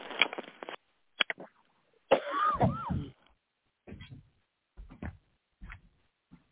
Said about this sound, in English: She's coughing. You always have sinus problems, sinus and chest problems.